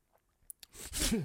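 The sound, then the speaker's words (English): A voice fakes a sneeze: two quick sharp intakes, then a loud, breathy, hissing burst that ends in a falling voiced tone, all within about a second. “That wasn't a real sneeze, so I wouldn't expect you to anyway.”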